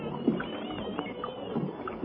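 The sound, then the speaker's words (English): Oars splash and creak as a small rowboat is rowed over to another boat, with steady dips and watery gurgles blending into a continuous low wash. “All right, we pull to. Let's row over.”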